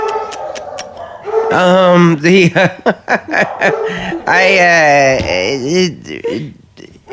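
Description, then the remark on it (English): People imitate dogs barking and howling, with a few quick yips and then long, wavering yowls that rise and fall, loud, mixed with chuckling. “Shut up, Bumpuses!”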